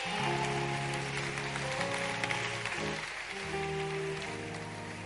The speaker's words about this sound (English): But clap your hands for Jesus today.